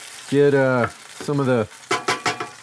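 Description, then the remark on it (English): Whole canned tomatoes hitting a hot pan and cooking down: two loud, squealing hisses, then a quick run of sputtering pops and sizzles, with no talking. “And now I'm going to add my tomatoes. And these are just whole canned tomatoes.”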